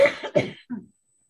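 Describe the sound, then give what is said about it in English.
A person coughs in a quick run of three harsh bursts, fairly loud, the last one softer and lower, followed by silence. “We are to bless you when you cough, not when you sneeze.”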